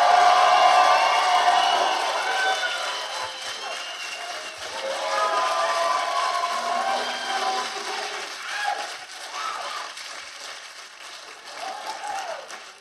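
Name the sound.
audience applause and cheering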